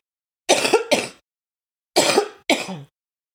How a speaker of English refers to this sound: Yeah, excuse that. That's the first cough of the day.